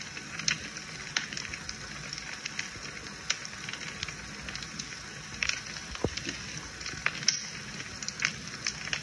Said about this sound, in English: But I mean, he's the one that set up our fireplace for us, so came over because he wanted it. He's like, hey, it's gonna be the last fire in here for a while